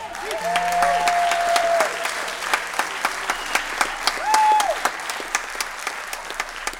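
A crowd applauds with dense, steady clapping that thins into scattered individual claps, while a couple of brief high whistles ring out above it.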